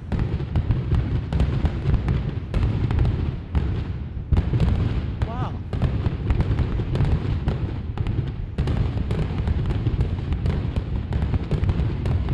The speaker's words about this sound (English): Maybe some fireworks in the air. How about fireworks? Where's the fireworks?